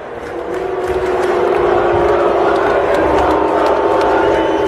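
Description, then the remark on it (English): A large crowd at a football stadium in Philadelphia boos loudly and steadily as First Lady Jill Biden takes to the field for a pregame song tradition. It is a thick, sustained low roar of many voices that swells slightly and holds for the whole stretch, with no individual speech standing out. “Well, do you hear that booing?”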